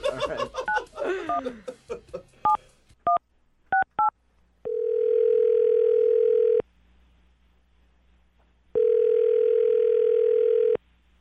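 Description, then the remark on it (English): Brief laughter, then a quick series of beeping telephone keypad tones as a woman's phone number is dialed, followed by two long, steady ringing tones about two seconds each, separated by a pause, with no talking. “I'm going to dial her phone number right now and find out the reason she's not calling you back.”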